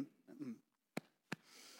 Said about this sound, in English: clear my throat out.